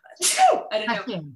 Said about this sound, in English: oh, excuse me, I'm going to sneeze.